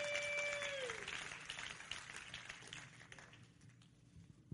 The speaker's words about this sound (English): Oh, clap your hands to the Lord and let's give him praise together.